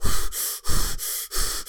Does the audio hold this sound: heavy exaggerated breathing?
yes